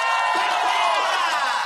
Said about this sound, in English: And in true Canadian fashion, the opposing team is clapping for them as they see this.